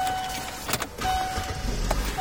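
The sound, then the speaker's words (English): Steady low rumble of a car driving to a store that rents furniture, heard from inside the cabin, with a couple of brief clicks and a faint thin tone over the road noise. Nobody speaks. “We drive to a store that rents furniture.”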